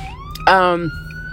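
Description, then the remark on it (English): A fire truck siren wails steadily over low traffic rumble as the truck passes a car waiting at a red light, broken by a short, loud blast of a brassy horn that cuts in and fades back under the siren. “And excuse that, there's a fire truck that's passing me as I sit at the red light.”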